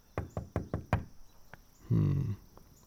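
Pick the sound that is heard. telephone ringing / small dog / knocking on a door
knocking on a door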